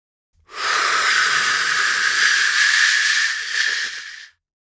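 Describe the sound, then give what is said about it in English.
A voice imitates rushing river water with one long, steady, breathy shushing hiss, loud and unbroken for nearly four seconds before cutting off. “Rushing river.”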